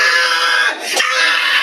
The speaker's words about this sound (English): Video shows … screaming at the boy, inches from his face.